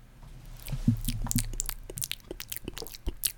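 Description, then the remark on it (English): Someone takes a sip of a drink: soft wet slurping and lip smacks, a brief gulp, then a few small mouth clicks, with no talking. “Now, if you'll excuse me for just 1 second as I take a sip here.”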